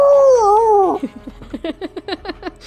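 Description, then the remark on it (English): A gnoll howls in savage victory: a wavering, drawn-out howl rises and falls for about a second, then breaks into a quick run of eight or so sharp, cackling yips in a steady rhythm, fairly loud. “The gnoll howls out in savage victory.”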